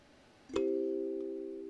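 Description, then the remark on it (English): A metal tine, one of several small metal strips whose lengths can be changed for tuning, is plucked once over a wooden resonating block with a hole, giving a sharp bright attack and then a steady, mellow mid-pitched ring that sustains and fades only slightly, with no voices. “It's just a wooden block, and it resonates the metal a little closer with the hole.”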